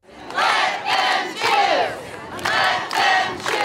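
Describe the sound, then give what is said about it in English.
A crowd of about 200 parents and children protesting vaccine mandates in schools at Balboa Park, San Diego, California, chants in loud, rhythmic bursts, with four or five shouted phrases separated by brief dips, the many voices blending into a dense roar. “Here in San Diego, protesters gathered at Balboa Park.”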